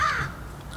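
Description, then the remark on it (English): A crow gives a single harsh, raspy caw that fades quickly, against a faint background with no one talking. “The crows.”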